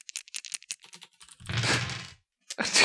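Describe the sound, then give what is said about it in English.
Dice clatter: a quick run of sharp plastic clicks, then a rough, rumbling roll across a surface, followed by a brief pause and another rattling burst. No one speaks. “Oh, it sounds like you're ready with dice.”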